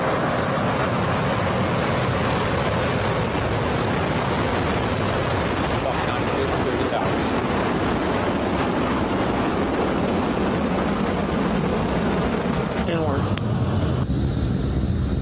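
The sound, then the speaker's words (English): The roar of a white, 70-meter-tall Falcon 9 rocket lifting off at night under partly cloudy skies from Space Launch Complex 40 at an Air Force Base in Florida: a loud, unbroken wall of rumbling, crackling noise that holds steady for about fifteen seconds, with harsh popping bursts riding on top of the deep thunder. “Lift off of the Falcon 9.”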